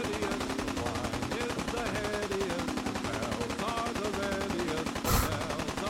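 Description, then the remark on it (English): Rapid, unbroken video game gunfire rattles on for the whole stretch, dense and loud, with a sharper burst near the end standing out over the steady barrage. “Are we just stuck on constant gunfire?”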